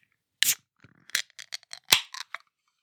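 A bottle of Black Butte Porter beer being opened: a sharp crack with a brief hiss, then a scatter of small clicks and scrapes, another sharp snap and a few faint clinks. No one speaks.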